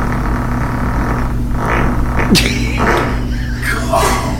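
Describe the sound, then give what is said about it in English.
A loud, drawn-out fart with a low, buzzing, throbbing rumble that holds steady for several seconds, broken by a few short, breathy noise bursts. “That fart has girth to it.”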